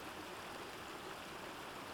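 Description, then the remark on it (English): A crystal-clear babbling stream meanders and flows steadily over a shallow riverbed, its broad, even rush of water filling the whole moment without pause. No voices or other sounds break through. “The sound of a babbling stream became audible.”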